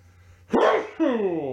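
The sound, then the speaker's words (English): A single loud sneeze bursts out after a quiet moment, a sharp noisy blast followed by a voiced, tailing sound that slides downward in pitch. “God bless you, I guess.”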